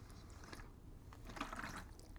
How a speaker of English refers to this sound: Let me get a bit of water. I got dry mouth because I smoked a fat joint before I started.